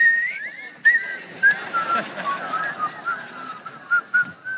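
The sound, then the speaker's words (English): A person whistles a slow, wavering song melody, clear, with notes gliding up and down over a few seconds against faint background noise. “wasting time. Whistle.”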